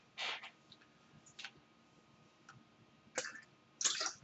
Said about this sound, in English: Just having a little bit of drink of water. I always tend to have a few zips of water at the first part of my messages, I notice.